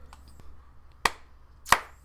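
A single person claps twice for their own movie, two sharp, crisp hand claps about two-thirds of a second apart, over a quiet low hum with no talking.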